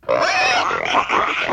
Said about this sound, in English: No! A fourth pay pig. Fourth? I missed the third. God. We got four oinkers?